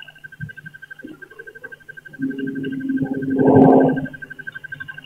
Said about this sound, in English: So that's still the truck up the street that we're hearing, entering the bins. Recycle bin, so that's a lot of can and bottle noises.